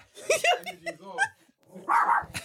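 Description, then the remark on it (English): A female dog barks and yaps in a quick, uneven series of sharp calls, ending with one louder, rougher bark after a short pause. “Why is your dog barking at me?”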